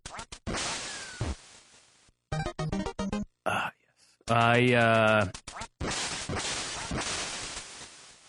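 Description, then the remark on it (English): Retro sound effects from the video game Duck Hunt: sharp gunshot-like blasts and noisy bursts, then a loud, buzzy electronic quacking, with more harsh static-like bursts afterward. “I really like the game Duck Hunt, but recently my girlfriend told me that I spend too much time playing Duck Hunt.”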